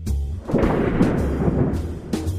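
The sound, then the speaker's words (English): A sheet of aluminum foil is shaken to fake thunder, giving a sustained low, crackling rumble with rough rattling surges and a few sharper crinkly bursts, fairly loud throughout with no voices. “Nice, but if you think that's actual thunder, guess again. Any ideas what it is? Did you say a sheet of aluminum foil?”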